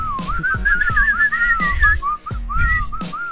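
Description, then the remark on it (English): A person whistles in imitation of a groundhog's alarm call: a loud, wavering whistle held for several seconds with a couple of brief breaks, over a few dull low thumps. “But that's where the whistle pigs come in, because if they're scared, they're known to whistle, or if they're trying to holler at a girl...”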